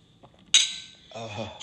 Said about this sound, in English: Yeah, you heard the glass clink. It's the first day of school, guys.